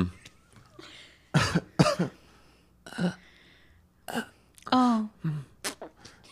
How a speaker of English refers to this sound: Can you cough a little bit?